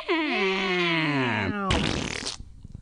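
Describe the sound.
A person imitates a bobcat with a loud, drawn-out yowling cry that slides downward in pitch, then, after a short gap, imitates a fart with a raspy, sputtering noise lasting under a second.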